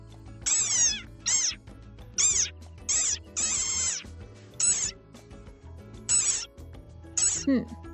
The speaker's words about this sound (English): Their calls supposedly sound a bit like a dog's squeaky toy. Let's put it to the test. Here's a rain frog. And here's a dog toy. Another rain frog.